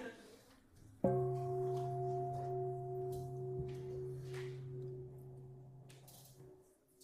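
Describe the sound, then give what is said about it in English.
A meditation bell is struck once, sending out a rich, steady hum of low and mid tones that lingers and slowly fades over several seconds. “This bell is awesome.”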